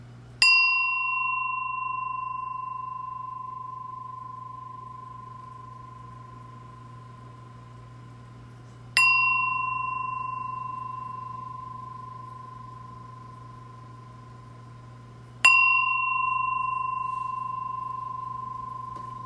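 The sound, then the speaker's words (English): A bell is struck three times at slow, even intervals, each ring clear and resonant, then fading gradually into a long sustained tone before the next strike. No voices are heard. “So I'm going to ring this bell 3 times”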